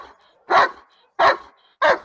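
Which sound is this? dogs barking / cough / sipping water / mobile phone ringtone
dogs barking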